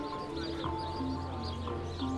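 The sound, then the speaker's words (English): A busy chorus of sparrows chirps continuously in a Christmas tree in Vörösmarty Square, many overlapping calls at once, over a steady low hum of outdoor city noise. “You can probably hear I'm next to the Christmas tree, in Vörösmarty Square, and it's just got like a load of sparrows in it.”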